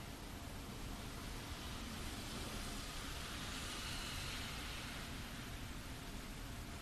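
Steady rainfall makes a dense, even hiss, with a low traffic rumble blended underneath. The level stays constant throughout, with no voices and no distinct individual events.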